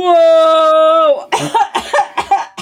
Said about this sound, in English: Whoa! You surprised me so much, I just coughed.